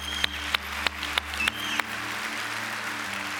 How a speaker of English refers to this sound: CCB, are you glad to be a part of a church that wants to balance that kind of grace and truth? You can clap for that.